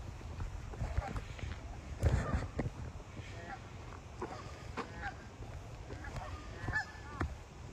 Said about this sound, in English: You listen to the ducks. It's just pretty amazing. When you just enjoy everything around you. I don't know if you can hear the ducks or not.